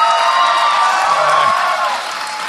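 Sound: audience clapping and cheering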